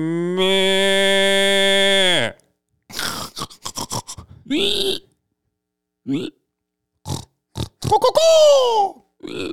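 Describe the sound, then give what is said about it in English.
A person imitates a pig: a long, steady nasal squeal, then a run of short grunting snorts, ending with a high, falling squeal, all loud. “Hey there, is that a pig?”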